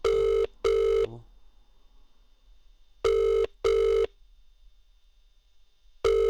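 A telephone ringback tone sounds in repeating double pulses, two short buzzy beeps followed by a pause of about two seconds, clear and steady with no one talking.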